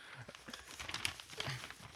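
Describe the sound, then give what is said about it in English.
A paper page being crumpled and crinkled, a steady run of dry, crackly rustles and small snaps lasting a couple of seconds, fairly soft, with no voices. “Stop crumpling the page it's on.”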